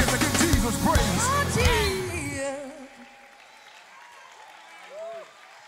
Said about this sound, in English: Come on and clap your hands all over this room. If you are happy for Jesus being the newborn king, y'all can do better than that. Let's clap our hands and thank the Lord Jesus.